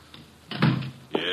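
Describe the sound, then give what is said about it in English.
An unlocked door opens with a low wooden rattle and thud, followed a moment later by a sharp latch click. “Come in, the door is unlocked.”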